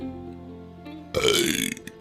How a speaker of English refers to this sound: God knows it wouldn't be a half-decent episode if I didn't burp in it. And I just did that, so far we're on the right track.